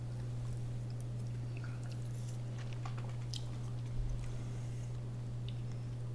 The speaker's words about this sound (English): It's 80 proof. It's not overproofed. It's just a really nice whiskey. It's a little more light or delicate than probably some others. Mm-hmm. Let's take a sip and then we'll talk more about that.